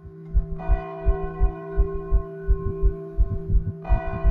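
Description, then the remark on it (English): Church bells ring out with a rich, lingering tone, struck again near the end, while a steady low thudding pulses underneath. No one speaks. “And in the morning, if I didn't hear the gunshots at night, I would hear the bells ring.”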